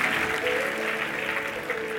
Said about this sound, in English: Come on, give God a good hand clap offering. Hallelujah.